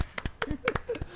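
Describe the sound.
A short burst of scattered hand clapping, about eight or nine sharp, irregular claps over a second, with faint voices mixed in underneath.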